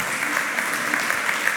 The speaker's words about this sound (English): Come on up here. Come on, everybody give her a round of applause. Come on up, get up on this stage.